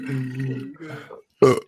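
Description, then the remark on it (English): A long, low, croaking burp rolls out in two stretches, fairly loud, followed after a brief pause by one short, harsher burst. “Sorry, liquor doesn't make you burp as much.”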